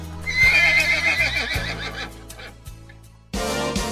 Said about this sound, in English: We love horses at Wake and Bake. And we know you do too.